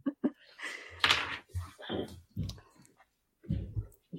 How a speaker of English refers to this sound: I'm going to hit pause really quick because my cat is at the door screaming and she keeps meowing and scratching at the door. Give me 1 second.